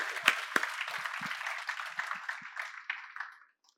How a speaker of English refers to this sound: Wow. Let's applaud Zacchaeus.